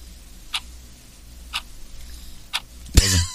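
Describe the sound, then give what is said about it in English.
A clock ticks steadily, one sharp tick roughly every second, clear over a low hum, ending with a louder clack at the end. “I like the clock.”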